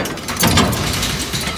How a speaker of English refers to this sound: Then with a loud, thunderous rumbling, the door rolls open.